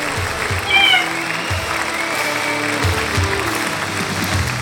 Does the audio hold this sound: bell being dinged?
no